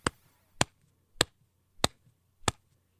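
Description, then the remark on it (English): Five crisp, bright snaps, a sound effect built as a version of the classic WorldStar Hip Hop sound, land at a steady, even pace, each one sharp and short with a hard attack and quick decay. A faint low hum sits underneath, and there's no talking. “You hear this like mm-hmm. bright snap, and then we'll add in like a thump.”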